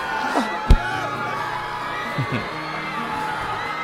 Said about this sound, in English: Well, I guess they notice me now. And they're screaming because they're jealous.